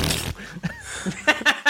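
Several short, sputtering fart noises in quick, irregular bursts, close and fairly loud, ending with three sharp blasts in a row.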